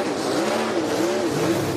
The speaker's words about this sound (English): And this is the burnout. Dale Jr. talking and the burnout.